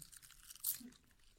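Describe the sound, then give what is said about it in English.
A single brittle crunch from a quiet bite into a thin, crispy, lightly salted snack strip with a parchment-paper texture, followed by faint chewing sounds. There's no talking. “38 of these strips just to even get nourishment”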